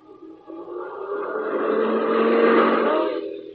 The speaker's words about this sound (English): there's the car.